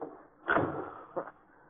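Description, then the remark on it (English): A back door opens with a sudden, fairly loud creaking burst, followed about a second later by a shorter knock as it closes, with no voices. “Out the back door.”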